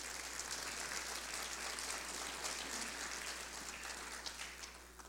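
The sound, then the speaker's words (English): A church audience claps steadily for several seconds as a clap offering for ten people being baptized that morning, a dense wash of many hands applauding together, fairly loud and even before tapering slightly at the end, with no voices over it. “Yeah, give a clap offering.”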